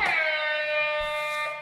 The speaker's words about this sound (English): I feel kind of bad doing the air horn for that, but the stock market collapses, starting the Great Depression.